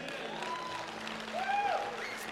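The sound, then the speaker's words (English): A crowd applauds steadily, a dense wash of clapping that swells slightly midway, with a few faint tonal notes and murmurs mixed in. “Now, I can tell by the applause that most of y'all here are saved, right?”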